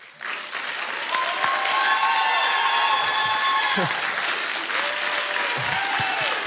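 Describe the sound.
An audience applauds steadily for several seconds as a prophetic act for a man writing his book: a dense wash of clapping that starts abruptly and holds at a fairly loud level, with faint voices and a few whistles mixed in.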